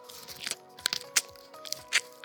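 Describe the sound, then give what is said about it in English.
Someone chewing moist pine needles from a tree as a moisture test: a series of soft, wet crunching bites in an irregular rhythm, about half a dozen chews over a faint steady hum, with no talking. “Grab a few needles, grab a pine cone, but with the needles, just put them right into your mouth and start chewing those needles and chew them just like this.”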